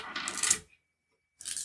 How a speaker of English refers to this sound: All right, roll me 7 dice if you're going to flare. 6 if you're not.